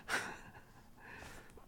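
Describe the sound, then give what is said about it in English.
A short, harsh cough bursts out, followed by a soft, breathy intake of air and then another abrupt, loud cough-like burst at the very end. “And there goes my cough.”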